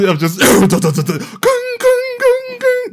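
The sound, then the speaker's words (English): A voice imitates a train: a rapid, breathy chugging burst, then four loud, steady whistle-like "woo" tones in a row, each held briefly at the same mid pitch. “That was the train thing going.”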